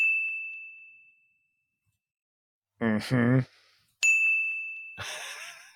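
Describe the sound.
A clear, bright bell ding rings out and slowly fades, followed by a short voiced burst. A second ding then sounds, overlapped near the end by a noisy, rustling flourish.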